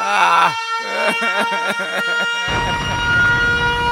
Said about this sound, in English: Let me go ahead and get my sirens ready. Where my sirens at?